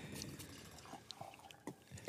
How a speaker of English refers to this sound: We're not going to drink anything that's not made in Kentucky or it's not bourbon, right? That's right. Well, let's pour a little bit of this.